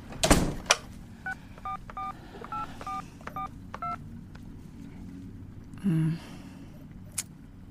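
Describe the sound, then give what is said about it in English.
A door is pulled shut with a sharp thud, then a string of telephone keypad beeps are dialed at an even pace, followed by a couple of faint clicks. “And pull the door to.”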